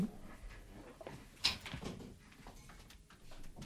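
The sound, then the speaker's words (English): A studio door opens to let a visitor in, with a single sharp clunk partway through, then a soft rustling shuffle against a quiet background. No one speaks. “just opening our studio doors and welcoming everyone in.”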